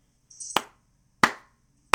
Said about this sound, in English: I think everyone's clapping. I'll do the clap for them.